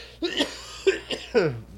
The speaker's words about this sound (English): And now I've coughed all over it.